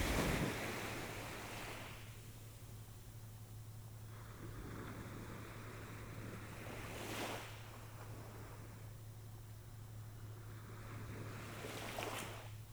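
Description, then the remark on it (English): Ocean surf washes in and out in slow, broad swells, with waves breaking softly every few seconds over a steady low rumble, and no voices. “Listen to the sound of the ocean.”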